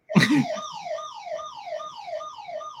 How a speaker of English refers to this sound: My house alarm went off. Oh, no.